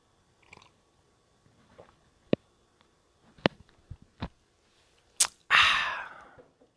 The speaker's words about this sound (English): I exaggerated that for you guys. I did the I exaggerated it so you know, like, oh, he took a long gulp of coffee. So you didn't feel like the few seconds of quiet time was a waste.